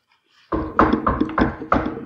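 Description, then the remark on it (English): Five firm knocks on a door in a steady, evenly spaced rhythm, each a loud hollow thud with a woody ring, and no voices. “So at close to 11, probably about 10:50, you hear five knocks on the door.”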